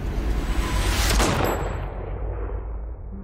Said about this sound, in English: It all starts with a dead girl. Jeez. A forest. The moon. Scent of pines. And then... the gunshot.